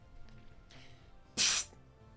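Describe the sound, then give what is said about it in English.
A voice imitates a single short, sharp spray squirt, a loud breathy hiss lasting about a third of a second, against a quiet low background hum. “Little spray. Squirt!”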